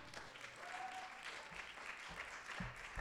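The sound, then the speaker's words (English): A live audience at the storytelling show This Really Happened, at Hopewell Theater in Hopewell, New Jersey, applauds spontaneously and steadily. It is a dense wash of many hands clapping at a fairly loud, even level, with a few brief low thumps and a faint whistle-like tone rising through it. “Spontaneous applause. I love that.”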